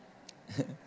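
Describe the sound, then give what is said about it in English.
A brief, soft voiced "baa" from people imitating a sheep's bleat, said to their neighbors, a single short call rising and fading within a second, faint. “So I want you to look at your neighbor right now and say, "Bah."”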